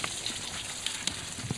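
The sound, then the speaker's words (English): A faint, steady hiss of air escaping from a punctured animal stomach, broken by a few soft crackling pops, with no voices. “It's just because there's a hole somewhere in the stomach and air's coming out.”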